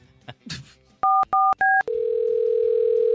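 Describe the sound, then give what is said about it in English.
A brief handset rustle, then three quick touch-tone keypresses beep in a row as a caller hangs up to call back, followed by a steady, loud telephone tone that holds to the end. “We gotta hang up and call you right back, Mom.”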